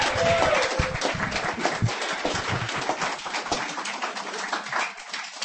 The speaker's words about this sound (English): he's all the way back there, so you're gonna have to clap for a minute.